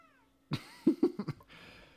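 A cat meows loudly, a quick run of four or five short, clipped cries after a quiet moment, with no one talking.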